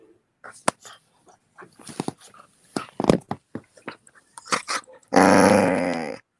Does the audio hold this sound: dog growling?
yes